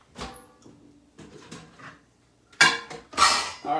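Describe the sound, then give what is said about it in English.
Handling sounds: soft shuffling and light taps, then two louder clattering knocks near the end as a personal pan pizza is set down on a ceramic plate to be microwaved. No talking. “So I'm going to put this on a plate, microwave it.”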